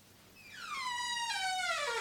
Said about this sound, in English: I really must oil the hinges of this door.